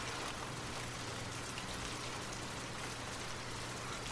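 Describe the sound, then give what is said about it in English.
Soft, steady rain patters down on the ground in a dense, even hiss of countless small drops, quiet and continuous throughout with a faint low hum beneath and no voices. “Listen to the soothing sound of the raindrops as they patter on the ground.”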